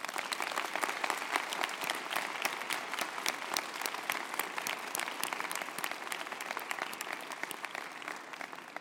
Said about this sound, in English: And if we could, I'd like to ask each of you to give a round of applause to all the folks out here who have supported you.